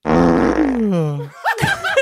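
A person vocally imitates a loud, buzzing fart that slides into a long, drawn-out descending yawn, followed by brief laughter and chatter from others.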